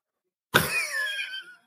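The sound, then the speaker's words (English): A single sneeze: a sudden, sharp burst of air that trails off into a brief, voiced, slightly whistly tail lasting about a second, with silence before it and no talking. “Thank you. Bless you.”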